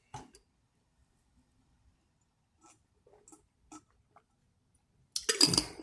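Quiet clinks and handling noises scattered over a few seconds, then a sudden loud rush of water pouring near the end as someone gets some water.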